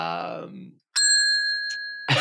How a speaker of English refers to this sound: The bell? Yeah. Whenever somebody says trade secret, I hit the bell because it happened every single episode in like the first 50.